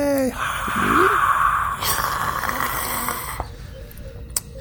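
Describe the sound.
Breathy voices rush and hiss into microphones, imitating the roar of a 60,000-seat outdoor stadium crowd: a sustained airy swell lasting a few seconds that cuts off, then a quieter breathy tail.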